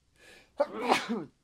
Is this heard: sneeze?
yes